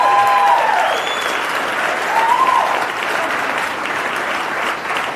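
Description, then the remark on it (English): An audience claps steadily throughout, a dense, even wash of applause with a few faint whistles rising above it near the start and middle. “You didn't let me finish Fauci Unmasked with Michael Knowles, so there's no need to clap. Absolutely no need to clap.”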